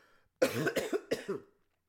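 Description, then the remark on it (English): A loud fit of coughing: two or three harsh, raspy bursts in quick succession, followed by silence. “As you could tell, we have a low budget, so I can't even afford a cough button.”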